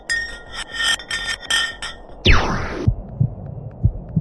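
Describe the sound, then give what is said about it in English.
An ice block falling down a deep ice borehole: a pulsing, whirring rattle, then a sharp crash with a downward-sweeping, laser-like whine, followed by scattered low thuds and faint metallic pings. “After the effortless digging, they decided to drop some ice to the bottom of the hole to see what would happen next. They heard some really unusual sounds.”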